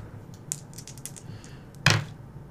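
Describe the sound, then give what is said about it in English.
Dice rolled for a fighting roll in a tabletop game rattle with a quick flurry of light clicks, then clatter down with one sharp, louder knock before fading into quiet. No one speaks. “Oh man, this dice!”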